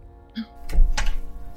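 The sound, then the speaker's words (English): A door opening: a brief high squeak, then a solid wooden thunk and a short rattling clatter that fades quickly, with no one speaking. “And the door opens slowly as River and Trevor kind of enter.”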